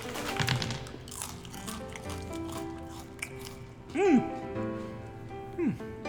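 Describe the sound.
Crackly crunching of maggot chips being chewed, loudest at the start, with a couple of short rising-and-falling voice sounds over the munching.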